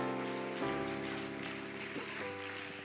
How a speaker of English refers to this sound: He's coming. Give him a good hand clap as he comes.